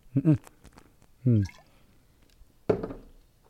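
Someone drinking lemonade: three short, wet gulping bursts spaced a second or so apart, with soft liquid slurps and swallows between quiet pauses.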